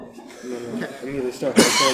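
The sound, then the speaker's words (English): A single loud sneeze bursts out near the end, sharp and breathy, right after a stretch of voiced talk. “Bless you.”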